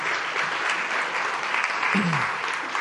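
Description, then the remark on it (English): A crowd applauds volunteers as they return to their seats, a dense, sustained clatter of many hands clapping at once, filling the room at an even level throughout without pause. “So give them a round of applause, if you will.”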